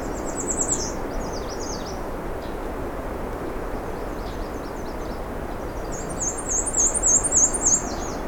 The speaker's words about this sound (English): It's the black and white warbler again.